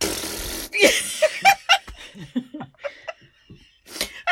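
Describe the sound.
A voice blows a short, noisy raspberry imitating a fart, then breaks into a run of choppy laughter with several quick bursts and a final giggle.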